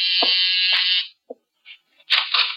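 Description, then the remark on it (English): A harsh electric doorbell buzzes loudly in a steady, high-pitched drone for about a second, followed by a few faint soft bumps and then a second, shorter rasping buzz. “Door, Archie? Yes, sir. I hear it.”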